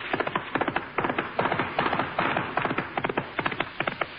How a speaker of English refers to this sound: Wait, listen. My horse is coming.